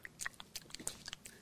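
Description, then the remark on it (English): A person imitates chewing on a mouthguard with their mouth: a quick run of wet smacks and clicks, fairly quiet, repeating irregularly for about a second and a half with no words. “He's talking because he's got that thing he's chewing on.”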